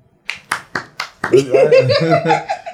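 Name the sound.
hand clapping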